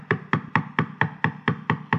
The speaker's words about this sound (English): Knock. Keep knocking.